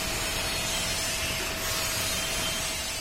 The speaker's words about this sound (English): Workers grind smooth the welds on a smokestack they've built for a new garbage incinerator.